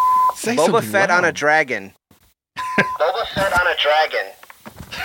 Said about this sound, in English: Oh, here we go. After the beep, say something loud.